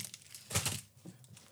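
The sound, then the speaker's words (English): A short burst of crinkling plastic wrapper, fairly loud, as a large package of chocolates is handled and cut open with scissors, followed by a few softer rustles. “Oh, this is a giant. We're going to cut it with scissors.”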